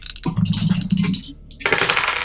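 Dice rattle and clatter across a hard tabletop in a quick burst of clicks, tumbling for about two seconds before settling, with no voices.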